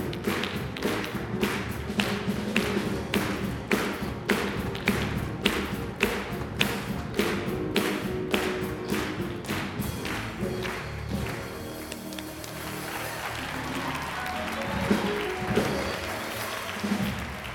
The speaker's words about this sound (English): Praise the Lord, everybody, clap your hands. Praise the Lord, everybody. Now just clap your hands. The Bible tells us to clap our hands and shout unto God with the voice of triumph.